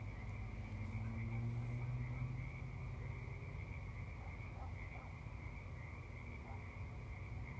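animal, frogs croaking

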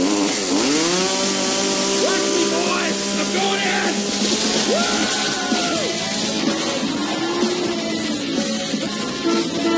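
tool, chainsaw running

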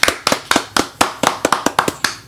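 crowd, round of applause

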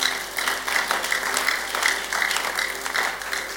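crowd, audience clapping

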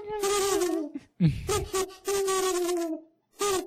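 bird, owl hooting

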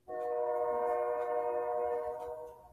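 vehicle, train passing nearby

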